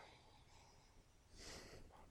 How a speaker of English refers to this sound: As the audience at home can hear us all sniffing. Oh, the smell.